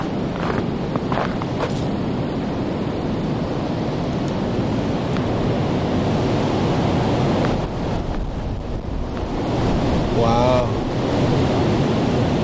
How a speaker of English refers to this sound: It's a really windy day, but I'm way out in the bush here. This place is called Limehouse. It's actually a really nice, kind of mild, easy trail in the summertime, and now it's all snowing.